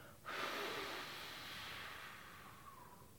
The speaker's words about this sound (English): Breathe in deep through your nose all the way down to your belly. Then blow out your candle. Let's try it one more time. In through your nose. And out your mouth.